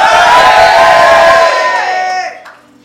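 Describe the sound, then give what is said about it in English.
An audience shouts "glory" together in a loud burst of many voices, holding the cry for about two seconds before it trails off into scattered fading voices. “Did you be shouting glory?”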